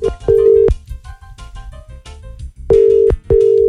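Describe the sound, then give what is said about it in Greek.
Steady electronic telephone ringback tone heard while a radio morning show places a birthday wake-up call to a listener, sounding in two pairs of long beeps separated by a pause, with faint background music underneath and no talking. “Πάμε να πάρουμε την Κατερίνα τηλέφωνο που είχε γενεθλία”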